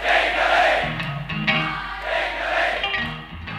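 A large live crowd sings together in a loud, sustained chorus, voices blending into a roaring, echoing wash of sound with a steady rhythm throughout.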